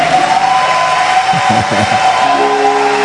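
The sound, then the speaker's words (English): A large crowd at a meeting claps steadily in a dense, continuous wash of applause that fills the whole moment, with a few voices calling out faintly beneath it; those at the back are told to clap alone while those in front stay silent. “Those in front, don't clap. Those at the back, you alone clap.”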